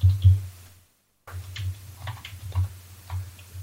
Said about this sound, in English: Ignore the typing in the background, and it is loading.